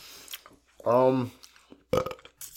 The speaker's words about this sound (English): You get a better burp than I did.